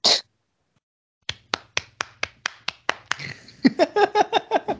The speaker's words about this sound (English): You know, for the audio listeners to hear that and what you just said and then to hear clapping after that.